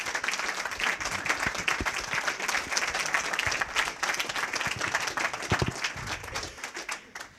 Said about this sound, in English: First of all, thank you. I will keep the questions going, but do want to give you a round of applause for a phenomenal...